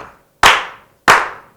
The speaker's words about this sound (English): Can we slow clap Las Vegas? Yeah.